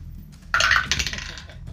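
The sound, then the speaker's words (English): Dice are rolled again for a check in a tabletop role-playing game, clattering and tumbling across a hard tabletop, a sudden bright rattle of quick clicks that bounces a few times and slowly settles, with no voices. “So roll again.”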